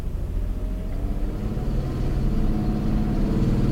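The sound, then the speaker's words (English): The engine of a vintage SEV6 King Cab two-wheel-drive pickup truck runs steadily, a continuous low rumbling drone that swells a little louder partway through, with no one talking. “I'm just going to shut up now and let you guys enjoy the sounds of the vintage SEV6 King Cab two-wheel drive.”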